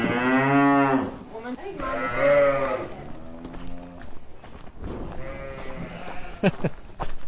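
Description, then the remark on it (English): Several cows moo in turn, long harmonic calls, some overlapping, loud, with quieter farmyard rustling and shuffling between the calls. “A whole lot of mooing going on.”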